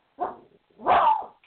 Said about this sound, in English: I'm sorry, my dog's barking.